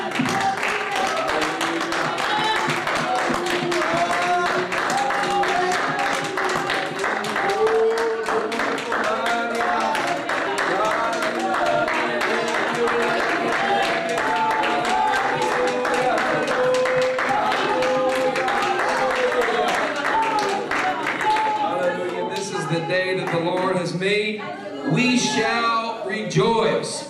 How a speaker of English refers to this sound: Can we all clap our hands to the Lord this morning?